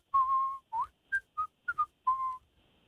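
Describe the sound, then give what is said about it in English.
A person whistles a short, halting tune of about seven notes, some long and sliding, others brief and clipped, clear with no talking. “I was just whistling, by the way.”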